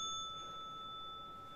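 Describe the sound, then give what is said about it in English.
A single bright bell ding rings out and lets its clear metallic tones hang and slowly fade, fairly quiet and heard on its own with no talking. “Bring the fucking bell.”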